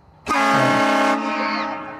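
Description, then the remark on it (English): A loud, sustained train-style air horn blasts for about a second with a rich, harmonic chord, then fades out with a slight sliding tail. No one speaks. “Like the train's coming.”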